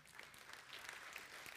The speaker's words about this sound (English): Kind of feels a little like the State of the Union, you know. Some people over here clap, some people over here not so much.